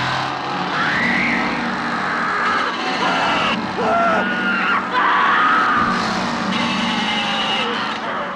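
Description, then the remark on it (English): In a horror film scene, a woman screams in repeated, wavering shrieks as her brother is killed, nearly buried beneath the loud, steady engine drone of a running chainsaw plunged into his chest, with chaotic noise throughout. “Sally screams as her brother dies and runs towards the nearby house seeking help”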